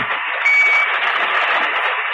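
A pocket alarm watch sounds a harsh, muffled electronic buzz that runs steadily for about two seconds, with a thin, brief beep-like tone early on. No one speaks.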